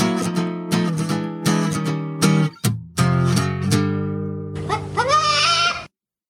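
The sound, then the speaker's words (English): Loud goat bleats come in a quick string of short cries, then one longer, wavering bleat closes the sequence. No one speaks. “See, when you're listening carefully, it's not a chicken, is it? It's not. It's a goat.”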